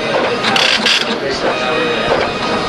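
A braille embosser and inkjet printer run together, embossing braille and inkjet printing at the same time, with a steady, busy mechanical clatter and whir, loud, with brief rattling bursts throughout; no paper has come out yet.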